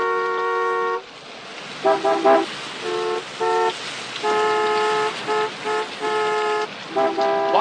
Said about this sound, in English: Honking.